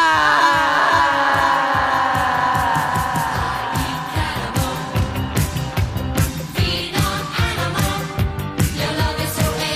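A loud, shrill scream opens and holds for a few seconds, then breaks into a rapid, rhythmic pulsing of sharp bursts that continues to the end. No one speaks.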